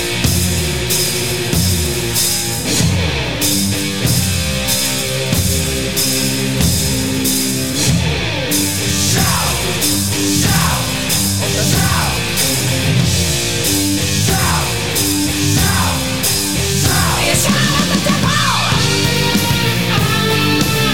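A loud heavy metal song from 1983 plays continuously, with dense distorted guitars, a steady pounding beat and wailing sung vocals filling the whole stretch without pause.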